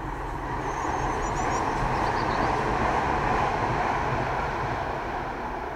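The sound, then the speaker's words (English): A tram rolls past a garden outdoors, a steady rumbling with a broad low roar holding evenly throughout, with faint chirps of birds high above it near the start. No one speaks. “I'm recording this episode in my garden, so you'll hear the tram.”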